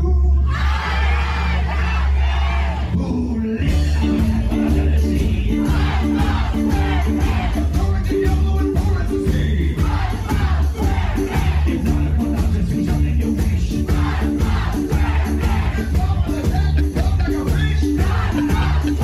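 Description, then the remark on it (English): A large concert crowd shouts and sings along over loud live band music as a metal band's lead singer and a cartoon voice actor trade lead vocals on a cartoon theme song. The mass of voices is steady, with a short, quieter stretch before the full roar begins. “Everybody in the crowd knew that was …, the lead singer of …, along with the voice of SpongeBob doing the theme song live”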